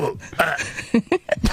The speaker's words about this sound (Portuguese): Tão bom, já estamos nos arrotos.